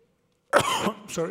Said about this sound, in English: Sorry. Shouldn't cough in the mic.